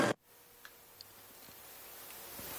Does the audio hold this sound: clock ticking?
yes